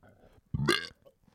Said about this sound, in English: I just felt that burp forming inside. Oh, yeah. We had burgers tonight.